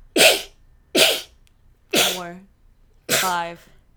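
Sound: sneezing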